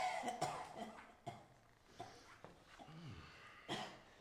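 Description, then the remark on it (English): A person coughs repeatedly in harsh, irregular bursts in a cavern with nitre on its walls, fairly loud, with a strained throaty wheeze between fits and no talking. “How long have you had this cough?”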